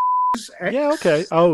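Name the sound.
censor beep over speech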